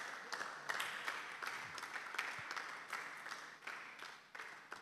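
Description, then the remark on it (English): An audience applauds steadily after a speech, a dense wash of many hands clapping that holds for several seconds, with a few sharper individual claps rising above the rest. “Please, a round of applause for him one more time.”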